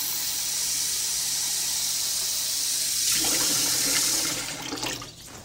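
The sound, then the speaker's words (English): Fresh water for a dog runs steadily from a tap in a hissing rush, its tone shifting midway as it fills a bowl, then tapering off near the end. No one speaks. “Some fresh water, buddy.”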